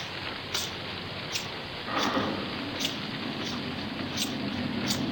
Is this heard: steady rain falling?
yes